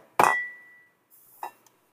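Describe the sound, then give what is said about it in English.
A chime is struck once during a weekly centering time, with a bright metallic hit, its clear high tone ringing out and fading over about half a second, followed by a few softer clinks and taps. “Each week, we ring this chime in solidarity with people around the world.”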